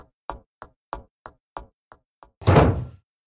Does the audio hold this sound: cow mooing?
no